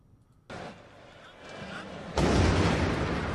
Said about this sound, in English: That's during the soccer game. That explosion. Here it is.